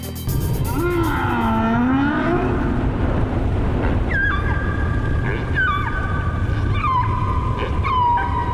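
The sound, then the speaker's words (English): Humpback whale song from two male humpback whales in the middle of the ocean: a low, sweeping moan rises and falls, followed by a series of higher, repeated tonal calls with sliding pitch, set against a steady underwater rumble and no voices. “Male humpback whales repeat each other's songs and add to them so they become ever more complex and beautiful, showing off their memory as well as sheer volume.”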